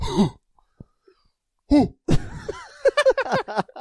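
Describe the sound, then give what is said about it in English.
A person vocally imitates a cow's cough with a few harsh, breathy bursts, followed by a run of strained, voiced grunting sounds, fairly loud. “They cough like a cow. How's a cow cough?”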